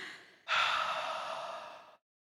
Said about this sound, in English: Everyone get ready for your three breaths of the day. Okay. Go. Now people are going to be like, stop breathing into the microphone.